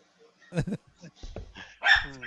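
A few sharp dog barks ring out: a quick pair early on, then a louder, higher bark near the end, with short gaps between them.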